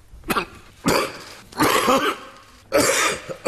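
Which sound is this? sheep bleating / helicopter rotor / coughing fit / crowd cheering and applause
coughing fit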